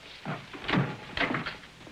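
A door is opened, making two broad, rattling clunks about half a second apart, at moderate loudness with no voices present.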